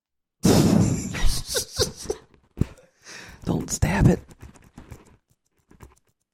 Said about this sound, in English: What else you got? I got a mechanical pencil.